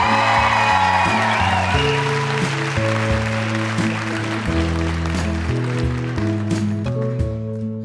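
A show audience claps and cheers with a few whoops for a guest's mother, the steady wash of applause mixed with loud music whose deep bass notes shift underneath throughout.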